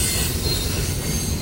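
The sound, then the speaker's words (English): A freight train rumbles steadily along the rails, a loud, continuous low roar with metallic wheel noise and a faint high squeal running through it, with no voices. “A freight train is rumbling down the tracks.”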